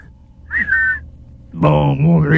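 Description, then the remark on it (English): A short, high, wavering whistle mimicking radio interference, then a louder buzzy, warbling tone that rises at the end, like a voice imitating a garbled transmission. “We are having interference on this scurf frequency. Sunspots, you know.”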